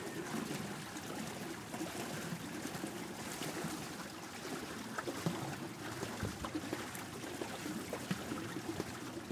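A boat churns steadily through river water on a boat ride in the Mekong Delta, Vietnam, a continuous rushing and splashing wash with a low engine-like rumble underneath, fairly loud throughout, no voices.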